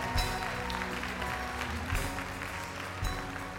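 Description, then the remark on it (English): An audience claps their hands together in praise, a dense, steady wash of applause with a few sharper louder bursts, sustained at an even level with no talking. “Let's give Him one more hand clap of praise today.”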